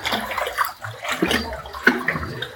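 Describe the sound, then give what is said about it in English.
Water sloshes and splashes in irregular surges as people wade through knee-deep water in a cave, with a steady watery churn and occasional louder splashes. Nobody speaks. “We're now wading through the water.”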